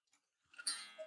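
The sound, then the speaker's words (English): A weight-driven cuckoo clock, wound once a week by pulling down on the chain to lift the weights, ticking faintly: one soft tick followed by a brief, breathy mechanical rustle, quiet with no voices. “You just pull down on the chain to wind it up once a week. So this is an eco-friendly clock also.”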